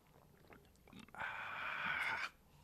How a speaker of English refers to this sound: I heard that gulp you made. Really? Got my panties moist. Feel like a bullfrog when I do stuff like that.